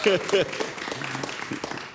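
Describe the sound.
A short round of applause for a quiz contestant who got two questions right: scattered, uneven hand claps over about two seconds, with a couple of brief voiced whoops at the start and the clapping thinning slightly as it goes.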